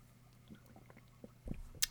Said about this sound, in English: Sorry, I was sipping coffee there, but that was a good point to end our style discussion on, I think.